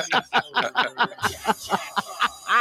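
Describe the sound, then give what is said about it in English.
A dolphin 'flipper' sound effect: a rapid, laugh-like chattering of about a dozen pulsed squeaky bursts in a steady rhythm, fairly loud and with no talking over it. “I have anal leakage when I hear the dolphin sound effect.”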